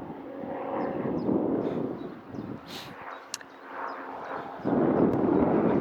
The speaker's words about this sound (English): Is there a plane coming over?